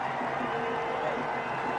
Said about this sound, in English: And you can hear from the cheers in the crowd that that means the 50 has been reached by the India captain.